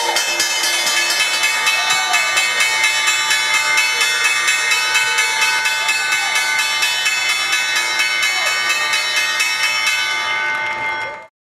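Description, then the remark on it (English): A stock exchange closing bell rings loudly, a bright, rapid electric clatter held steady for about eleven seconds before it cuts off abruptly, with faint crowd noise underneath. “There's the bell.”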